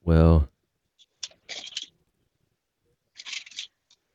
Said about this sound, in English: Hear those turning pages over there.